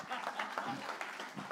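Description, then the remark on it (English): An audience claps together in a dense, steady patter of many hands, fairly soft overall, with crowd murmur mixed into the applause. “I'll let you clap.”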